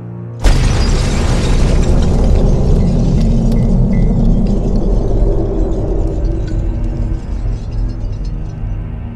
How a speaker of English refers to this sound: What was that? The car. It just exploded.